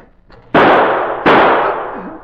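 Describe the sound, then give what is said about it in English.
Two loud gunshots fire in quick succession at a door as it opens, each a sharp crack that rings out into a long, slowly fading tail, with a faint low hum in the pauses. “Take good aim and shoot as soon as he opens that door.”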